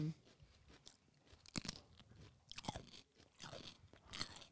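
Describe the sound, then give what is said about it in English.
Someone bites and chews a crunchy green snack shaped like a little cigar, with several sharp crackling crunches spread irregularly over a few seconds and no talking. “I bet those will be really crunchy and fun”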